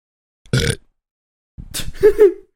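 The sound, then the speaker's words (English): A loud burp: a short gritty burst, a brief pause, then a longer croaking belch that rises and wobbles before trailing off. No one speaks. “Shout out to ….”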